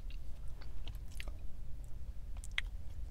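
Crunchy food being chewed inside a car in a quick series of crisp, sharp bites and crackles over a steady low rumble, with a particularly bright crunch near the end.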